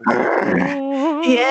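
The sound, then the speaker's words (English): A person growls like a dog: a rough, raspy rumble that eases into a wavering, voiced snarl, loud and alone for just over a second. “Why would he growl? He said he would growl twice.”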